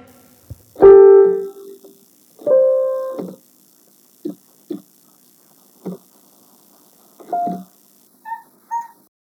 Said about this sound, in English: here's my cat with a self-taught piano solo. Enjoy!